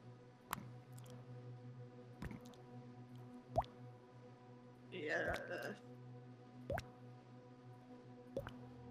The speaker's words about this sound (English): Something is just dripping on the floor.